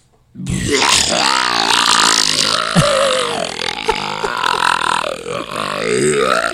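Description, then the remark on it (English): A voice performs a long, loud, continuous belching and retching imitation of vomiting, gurgling and straining for several seconds with shifting pitch, ending in wet heaving sounds. “Here's my Bert Belch puke, which is good enough to get paid for.”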